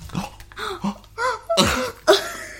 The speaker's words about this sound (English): This is my podcast, and you burped!